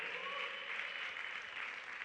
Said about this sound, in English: Somebody clap unto the Lord.